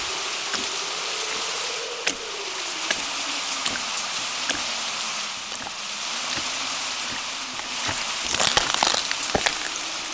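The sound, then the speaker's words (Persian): Steady rain hisses evenly throughout, with scattered louder drops ticking and a brief flurry of sharper patter near the end; no one speaks. “حالا یه گربه و بارون باید منو به سمت این حقیقت ببرن”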